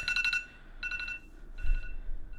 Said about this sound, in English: That was the most random alarm. It's 2 something. Why is that alarm going off anyway?